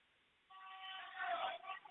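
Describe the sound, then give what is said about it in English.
A steady car horn blares over a crowd of voices at a teachers' picket line on Salem Street, with chanting swelling beneath it after a brief quiet start, then holding for over a second before cutting off. “You've got teachers holding signs, kind of the conventional picket line scene, and getting chants and honks going, as you might hear in the background.”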